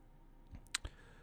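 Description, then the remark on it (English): A couple of quick computer mouse clicks, one sharp and bright followed by a duller tap, against a quiet background with no talking, clicking on an online article titled "15 dark secrets you never knew about Bill Nye the Science Guy". “Clicking on that.”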